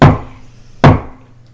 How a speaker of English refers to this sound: Three knocks.